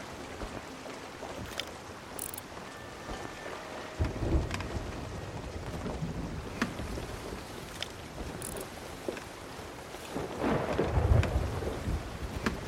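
Steady rain hisses throughout while low thunder rumbles roll in, one around the middle and a louder, deeper rumble near the end, with no voices.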